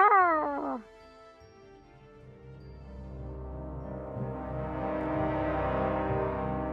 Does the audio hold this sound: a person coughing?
no